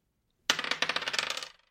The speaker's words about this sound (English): Give me a D6 for a flaw.